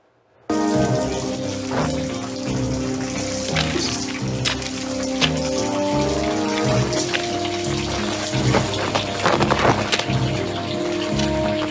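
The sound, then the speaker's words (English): Water drips and patters steadily down a mine shaft over a sustained, layered musical drone, with scattered sharper drops standing out, continuous and fairly loud for about twelve seconds. “But this way the water's dripping down, the way he kind of walks around the corner.”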